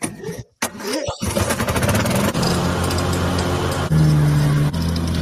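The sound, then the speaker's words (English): A Briggs & Stratton 600cc lawnmower engine coughs and sputters to life, then settles into a loud, steady buzzing drone, with a brief rise in pitch as it revs near the end. “This is a Briggs & Stratton 600cc motor.”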